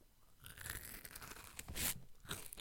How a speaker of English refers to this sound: If you want us to just crunch some Triscuits directly into this microphone... Wait. Yeah, get some good crunch.